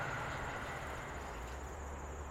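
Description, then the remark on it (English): A steady, broad rumble of a metro train rolling along the railway beside an open grass field at a farm in Inglewood, with a constant mechanical whine on top and low wheel thrum, sustained throughout. “On volunteer days, I park near the tree facing the mural that stretches along the open grass field and the railway where the metro train passes.”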